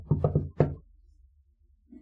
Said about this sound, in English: In the meantime, Nim has gone to Kenna's door. And Nim knocks on the door.